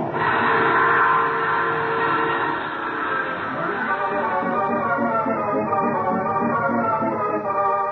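A passenger train rolls along the rails with a loud, steady rumble and rushing noise, the rhythmic clatter of the wheels growing more distinct as it continues.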